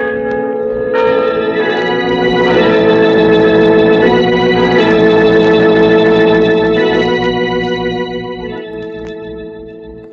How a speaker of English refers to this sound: Listen to the bells. Yes, they know. No. Can't you hear them jeering at me, mocking at me? You're penniless, they're saying. Penniless. Penniless. Die, you old fool. Die. Die. Die. Die. You bought those bells. Now let them ring your requiem.